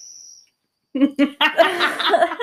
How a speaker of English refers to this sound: Cricket is screaming. I know. It's like he's hanging on a ledge or something and he needs you to rescue him.